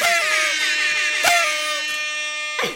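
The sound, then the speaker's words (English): A rap-style air horn blares in about four loud, brassy blasts in quick succession, each a sustained buzzing tone that runs into the next, with no talking. “The rap air horn is my MO, for sure.”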